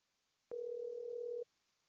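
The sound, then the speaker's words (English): A steady telephone dial tone hums for about a second while a call is being placed, clear and unbroken, starting and stopping abruptly against near silence with no voices. “I'm trying to see if they can call back. Hold on, let me call him.”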